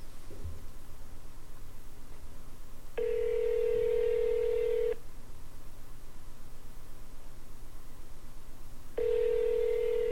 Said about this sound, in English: You should answer the phone. Like, literally. This could be like a hostage call from your daughter.